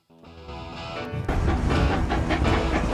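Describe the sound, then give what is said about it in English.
A scenic train in southwest Colorado rumbles along the tracks, starting with a low tonal hum before swelling into a loud, steady clatter of wheels and rolling noise, with no voices. “So you're on a scenic train ride through southwest Colorado when suddenly you see an elusive creature.”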